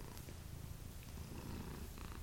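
Steady purring rumbles continuously without a break, a low, textured drone of two cats purring at once, with no talking.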